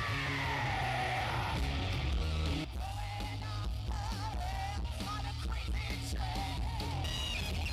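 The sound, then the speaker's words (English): A crowd at a tribute night for a singer screams and yells together, loud, in a sustained roar of overlapping voices with whoops rising above it for several seconds without pause. “Let's hear for …! Scream for …!”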